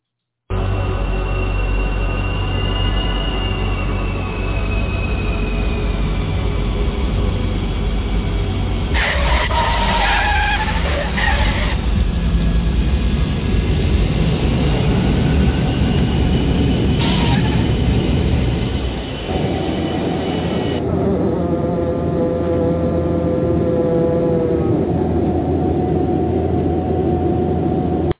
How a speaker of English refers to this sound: Now, that's what it sounds like when an airplane lands. We got this big iron bird safely on the ground.